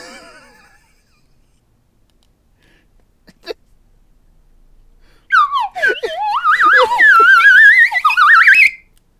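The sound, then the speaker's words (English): A loud slide whistle wobbles up and down in pitch for about three seconds, then swoops upward before stopping, following a faint quiet stretch and a brief tap. “Oh, you just have a slide whistle.”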